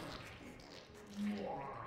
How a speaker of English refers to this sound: Why is he making fart noises?